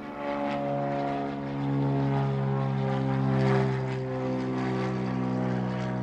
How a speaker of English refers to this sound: The same was true of airplanes. Hearing an engine overhead, they would pause and watch it fly over.